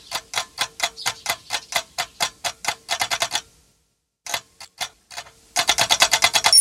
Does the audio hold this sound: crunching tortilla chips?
no